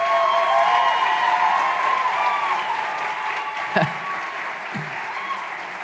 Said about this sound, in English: That was really good. I feel like you guys are already calling for an encore, so great job hooting and hollering.